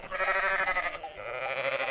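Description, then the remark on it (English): A sheep bleats twice in quick succession, each call long and quavering with a nasal, wavering tone, loud with no voices around it. “The dogs herded the sheep. And the sheep provided wool.”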